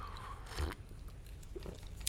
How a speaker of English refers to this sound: And today, we're going to start a new little series, and we're going to get right into that as soon as I have a sip of coffee.